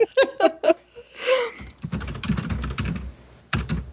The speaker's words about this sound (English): Oh, and that's the Italian typing. Yeah, can you guys hear the Italian typing?